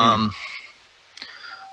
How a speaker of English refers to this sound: Ooh, doorbell just rang. I don't know who that was. But basically, DoorDash. Maybe, yeah.